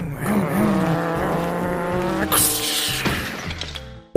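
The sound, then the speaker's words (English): Loud racing car engines roar and rev, with tires squealing as the cars race into each other. A sharp, crash-like burst cuts in around the middle, then the engines keep droning until a sudden thump at the end. “All right, let's race our cars into each other.”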